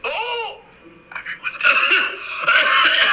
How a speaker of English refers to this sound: That's … coughing.